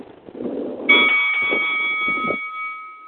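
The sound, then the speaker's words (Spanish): A bell is struck once and rings out with a bright, steady metallic tone that slowly fades, sounding over a low rumble of background noise. “Smoke al sonido de la campana.”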